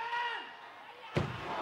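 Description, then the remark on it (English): A sudden sharp pyrotechnic blast from Roman candles bursts out partway through, a single loud thudding bang over a steady background hum of voices and tonal noise that lingers after the hit. “We're about to see the big explosion.”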